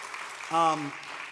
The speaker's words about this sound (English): They really, yeah, you can clap for that because that's amazing.